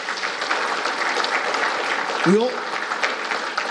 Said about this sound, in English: All right, ladies and gentlemen, a big round of applause before we start with Q&A.